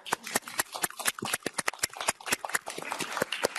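Applause from a group, a dense run of sharp, bright claps at a fairly steady fast rhythm, with no voices over it.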